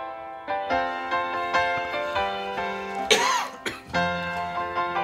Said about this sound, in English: now he coughs. During the break, he doesn't.